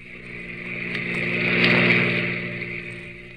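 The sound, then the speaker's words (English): Maxton's car, tailing the driver on a road, swells as it approaches, roars loudest as it rushes past, then fades away, a single quick pass with a steady mechanical drone. “Maxton's car whipped by.”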